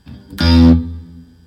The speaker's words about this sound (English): But I mean, like the reverb you hear on the guitar is a plugin right now, and it's simulating a smallish room. Yeah. Hit me a quick note on there.